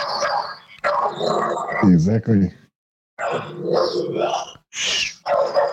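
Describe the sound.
A dog stuck under a chair barks repeatedly, loud and insistent, with a growly, whining edge between barks, after a person tries to move the chair, while a person speaks briefly.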